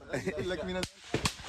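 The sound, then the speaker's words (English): A voice is briefly heard before three sharp, loud cracks of gunfire ring out in quick succession, the shots snapping with short gaps between them. “A volley of gunfire is heard. As the shots crack, the unarmed Palestinian men duck and run for cover.”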